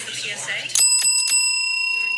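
Murmured background chatter gives way to a loud, bright school bell signaling the start of class, ringing with a few quick strikes and then hanging on as a sustained metallic tone.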